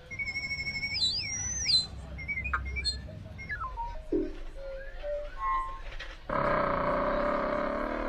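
A real Amazonian bird of unknown species calls in high, whistled notes that loop and sweep up and down in pitch, with short chirps, ending in a loud, buzzy, harsh sustained tone.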